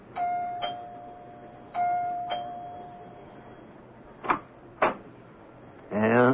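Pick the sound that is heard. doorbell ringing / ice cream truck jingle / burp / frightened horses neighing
doorbell ringing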